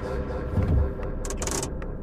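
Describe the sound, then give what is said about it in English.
A chronofiber hover car's engine gives a steady, deep rumble that swells briefly near the start, with a few short airy hisses breaking in toward the end, on a snowy street of digi-brick homes. No one speaks. “Good engine rumble and a smooth hover.”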